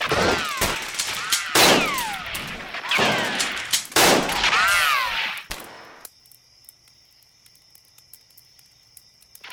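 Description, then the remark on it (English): A loud, dense burst of rapid gunfire with sharp overlapping shots and ricochet-like whines, lasting several seconds before cutting off abruptly, leaving a faint electronic hum and scattered ticks. “Take us out with a hail of gunfire.”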